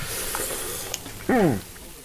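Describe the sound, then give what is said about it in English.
Elk burger patties sizzle on a little Weber charcoal grill in a driveway in the mountains just outside Santa Barbara, California, with a steady hiss and crackle, interrupted briefly by a short burst of a voice. “The patties are sizzling on a little Weber grill in his driveway, and they smell delicious.”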